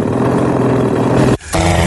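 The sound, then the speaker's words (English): A loud, steady plane engine rumbles as the plane flies past a house, then abruptly cuts out as if stalling, leaving a brief gap before a similar droning sound returns. No one speaks. “That sound of an engine just stopping right there is heartbreaking.”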